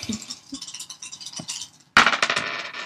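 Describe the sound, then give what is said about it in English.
Dice rattle and clatter in a cup for a couple of seconds, a bright, clicky tumbling, then spill out in a louder burst of sharp hard knocks that quickly settle. “So let's see what your dice have to say about that.”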